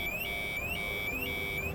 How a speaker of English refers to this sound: Hear that, friend? That's the cult alarm. It goes off in my head when I'm near a cult.